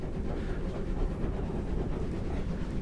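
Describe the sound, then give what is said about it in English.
A locomotive labours steadily uphill on the way from Alsford to Roffley, a dense low rumble with fast, rhythmic chugging beats running throughout, sustained with no voices. “The locomotive is now working hard on the way up from Alsford to Roffley.”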